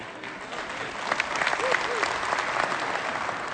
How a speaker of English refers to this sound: Now, you're going to want to take your applause back. Because here's the deal. None of that happened.